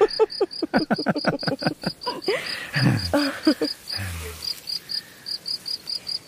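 A grasshopper chirps steadily in a fast, high-pitched rhythmic pulse that continues throughout, with a few louder clicking and rustling sounds briefly mixed in partway through.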